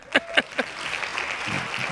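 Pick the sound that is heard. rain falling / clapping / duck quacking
clapping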